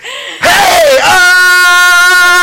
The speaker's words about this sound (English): You're screaming way too loud into the mic. You're about to rupture the fucking mic.